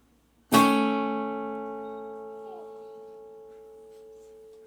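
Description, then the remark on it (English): A single electronic chime from an Echo smart speaker sounds abruptly, then rings on with a rich, steady tone that slowly fades over several seconds. Nobody speaks. “Shut up, Echo.”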